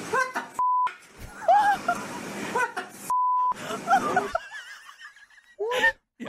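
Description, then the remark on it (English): Five African grey parrots at a zoo squawk and chatter in squeaky, voice-like bursts, their mimicked swear words cut off by two flat censor beeps, followed by a rising whistle and a short harsh squawk. “So five grey African parrots wouldn't stop swearing. Now, I'm going to play you a little bit of what...”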